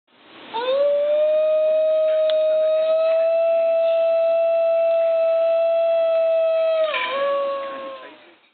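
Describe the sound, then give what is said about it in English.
A singing dog, the Highland wild dog breed, lets out one long, unbroken howl, holding a steady, eerie tone for about seven seconds before the pitch dips briefly and trails off, sounding almost like humpback whale song. No talking. “This breed of dog kind of howls more than sings with, you know, words and stuff, but its howls sound less like a typical dog whine and more like the songs of humpback whales.”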